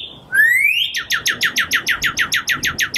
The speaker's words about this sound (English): The cardinal. My mother taught me when I was a boy that if you imitate a cardinal's whistle when one is nearby, it will answer back to you on and on as long as you want.